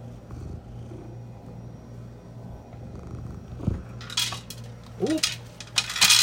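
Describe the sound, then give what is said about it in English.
An automatic cat feeder dispenses dry food on schedule at 12:30: a steady low hum gives way to several loud rattling bursts of kibble clattering into a bowl, with a brief chirp-like squeak between them. “I love the automated, whatever the fuck you call it, the cat feeder.”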